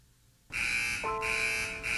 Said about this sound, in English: If you can hear car wash alarm signals coming from Spark Street, you could be entitled to compensation from the city of Burbank